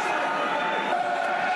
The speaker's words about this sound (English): Mill crowd starting to get behind their team now. Good to hear. Might be a small crowd, but it's a Millwall crowd.